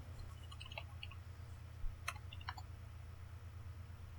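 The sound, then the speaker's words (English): Dice are rolled, giving a few light, scattered clicks and a brief clatter against a hard surface, fairly quiet over a steady low hum, with no one talking. “I'm gonna roll the dice to see how many of them there are.”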